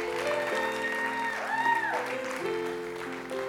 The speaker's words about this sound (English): You know what else is part of rejoicing? Sometimes you need to just clap. Just give God some applause. Well, I don't feel like it. Then you need to applause more.